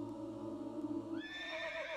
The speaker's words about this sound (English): Oh, God, it sounds like a horse. It's a half. It's come in the form of a horse this time. Oh, it's manifesting itself as an equine.